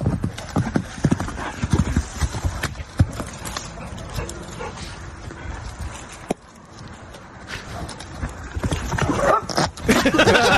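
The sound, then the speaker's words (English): Horse hooves clip-clop in quick, uneven steps as a horse kicks a tree, passes gas at some dogs and runs away, with the horse whinnying and the dogs barking amid outdoor noise. “the title of this video is Horse Kicks Tree, Farts on Dogs, Then Runs Away”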